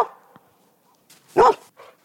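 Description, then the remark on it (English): A dog lets out one loud, sharp bark, surrounded by a few softer, shorter yips and whines in a brief, otherwise quiet moment with no one talking. “I've never heard a dog try to play devil's advocate before.”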